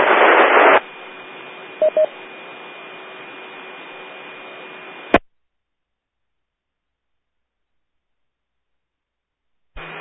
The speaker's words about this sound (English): I copied Kilo Echo 7 Whiskey, and then you fell into static.